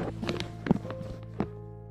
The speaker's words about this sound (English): I pull a chair up close.